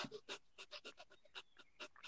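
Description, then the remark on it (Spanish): Rapid, forceful breaths pumped out in a steady rhythm during a breathing exercise, contracting the abdomen to push all the air out, about a dozen sharp bursts of air in two seconds, fairly loud with no talking. “Exacto, después botas todo el aire y como que llevas el ombligo hacia la parte de atrás. Entonces haces algo así como...”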